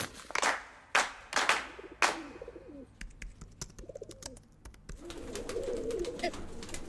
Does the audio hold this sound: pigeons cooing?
yes